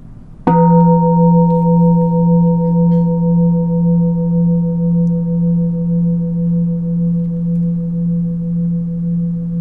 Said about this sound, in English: Notice a sound as it arises, as it passes. Can notice change also in any internal changes in the sound, the reverberation of the bell.